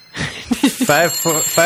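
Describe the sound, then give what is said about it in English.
A voice mimics telephones ringing with callers during a show's pledge drive: a quick string of trilled, warbling ring sounds, rising and falling in pitch, followed by three longer buzzing rings, fairly loud, over a faint high steady tone. “I think I hear the phones ringing.”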